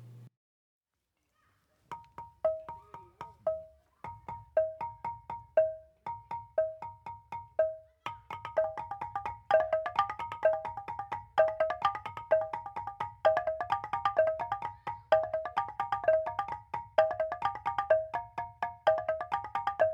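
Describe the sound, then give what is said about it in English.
A five-keyed gambang xylophone rings out in quick, bright struck notes. Two players sit facing each other on either side of it, sharing the five keys with mallets. One player's short repeating pattern starts alone, then the second joins, layering a denser interlocking polyrhythm of two repeating sequences, with no voices. “sitting facing each other on either side of a five-keyed xylophone called a gambang”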